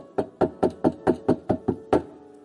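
Nine firm knocks on a door in a steady, fairly quick rhythm, with a slight pause before the last one. Each rap is hollow and woody, with no talking.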